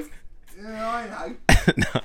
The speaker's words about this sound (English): stay... stay... you got a bit of a cough up now. Well, you got should you be here today? Are you crook?